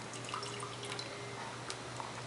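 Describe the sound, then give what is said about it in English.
Water is poured into a beaker as chemicals are being mixed, a faint, steady trickle with a few soft drip-like splashes over a low constant hum, no voices present. “He's going to grab the water, come over here, and he's going to pour the water.”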